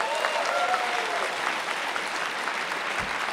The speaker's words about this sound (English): Anyone else? Show of hands, a round of applause. I can't see you. Feel that way on campus?